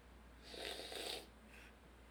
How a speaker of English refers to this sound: You purposely sipped that way, didn't you? Yeah, I did.